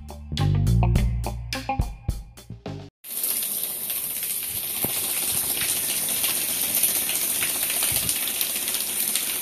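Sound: cold shower water running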